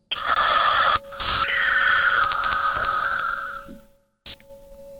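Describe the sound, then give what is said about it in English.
Odd, electronic-sounding breathing in a voicemail message over a phone line: two long, harsh, wheezy breaths with a clipped, buzzy edge and a steady tone underneath, then a sudden cutout and a brief click before faint hum resumes. “Sounds like somebody breathing weird. It is breathing weird. It's almost like clippy sounding. It almost sounds electronic to me.”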